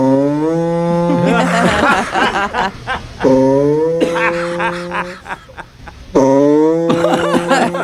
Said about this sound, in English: Customer states their vehicle is making farting noises.